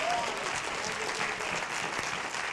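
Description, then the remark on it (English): An audience claps for God, many hands blending into a dense, sustained wash of applause that holds at an even level for the whole stretch, with no voices standing out. “Somebody clap for God.”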